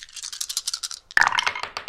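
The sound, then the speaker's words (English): A handful of six dice rattles rhythmically, as if shaken in a cup, then spills out with a sharp clatter and bounces across a hard surface. Fairly loud, with no voices. “Okay, so that would be six dice.”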